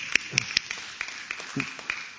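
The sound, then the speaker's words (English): Scattered applause from a crowd giving a man a big hand, irregular hand claps spread across the moment, fairly soft, with a few faint voices murmuring underneath. “Let's give him a big hand.”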